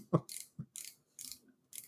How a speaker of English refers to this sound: Who is fixing a car or something? Oh, sorry. That's me. I found a mechanical pencil.